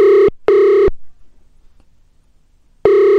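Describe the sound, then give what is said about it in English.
A phone ringtone rings in loud, clear bursts as a call is placed: two quick tonal pulses, a pause of silence, then another burst begins. No one speaks over it. “It's a weird ringtone.”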